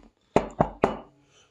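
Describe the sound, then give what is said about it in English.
Three quick, evenly spaced knocks on a door, solid, each with a short resonant decay, followed by quiet. “But suddenly, there's a knock on the door.”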